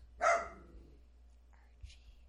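A single sharp bark from a pet dog rings out, followed by quieter shuffling and a brief faint sound, with a low background hum throughout.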